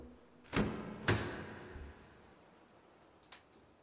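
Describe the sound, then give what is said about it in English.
A heavy hatch door in the floor, thought to lead to a basement, is hauled open with two solid thuds about half a second apart, followed by a low creak and then a faint click in a dark, quiet, echoey space. “There's a door on the floor. A hatch? I think it's basement.”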